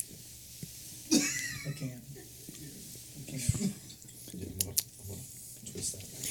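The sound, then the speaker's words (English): Coughing and gagging after a sip of non-alcoholic beer: a sharp retching burst, then strained, wheezy breaths and a few more short choking coughs spread over several seconds. “That almost came back up.”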